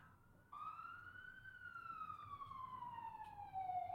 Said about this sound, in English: I will say, I don't know if the fucking sirens are in the background here or not, but hopefully they're not after me.